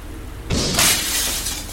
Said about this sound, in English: I fired a warning shot into the glass. The jackass ducked and fell onto the floor, screaming and shrieking like a banshee as the broken shards collapsed into the folds of his coat.